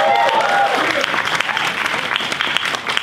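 A large audience applauds loudly and steadily for a few seconds, giving God a big hand and a shout, with dense clapping, scattered cheers and a brief whistle-like shout near the start.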